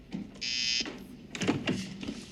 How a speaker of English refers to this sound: You buzzed, sir?